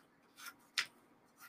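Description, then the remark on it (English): Three quiet snips of scissors cutting up expired plastic credit cards, the middle cut sharpest and crispest, with short pauses between and no talking. “I'm going to cut up all these cards because I don't want people getting my information.”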